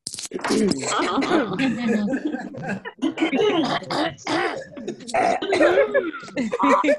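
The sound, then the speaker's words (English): Several people on an online call, mics unmuted, clear their throats at once, overlapping rough, gravelly rasps and short coughing bursts that carry on steadily for several seconds, fairly loud. “Clear your throat.”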